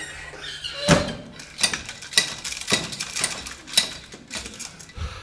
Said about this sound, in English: He ran through his front garden and flew into the house, bolting the thick oak door behind him.